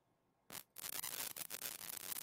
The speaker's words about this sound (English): Nope. Still static. This is wonderful.